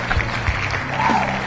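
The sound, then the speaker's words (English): A short burst of canned applause: a dense, steady patter of many hands clapping over a faint low hum, lasting about a second and a half with no talking. “Oh, I stepped on my applause. My own applause.”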